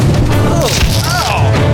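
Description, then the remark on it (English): A door is banged open with a loud, booming, heavy thud, set against a dense wash of noisy background sound. “All right, well, hit one of these buttons and get that door open. Hold on. I think 2 more bangs and... Oh, it's open.”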